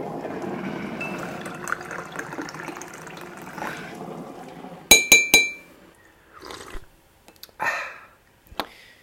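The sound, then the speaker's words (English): A steady rush of pouring liquid gives way to three quick, bright ringing clinks of a spoon against a cup, followed by a few softer scrapes and taps as a cup of tea is made at home. “Well, let's head back home, grab a cuppa”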